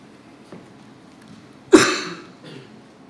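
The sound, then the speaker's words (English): A single sharp, loud cough, followed by a softer, shorter rasp a moment later, with no one talking. “You yawn, and I want to yawn, and if you cough, I don't think I got a cough, and then all of a sudden I got a cough.”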